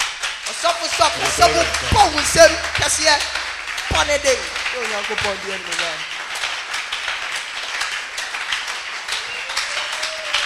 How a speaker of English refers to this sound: Amen. Amen. I want you to just clap your hands.